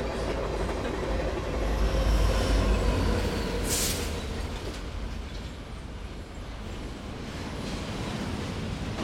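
A train rumbles past at Grand Central station, its steady low roar and rattling wheels filling the scene, with a brief hiss of air around the midpoint. No one speaks.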